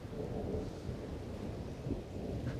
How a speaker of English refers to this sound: It rains. It rains for the first time in Valis since Solus began. And it will rain until Imbar ends.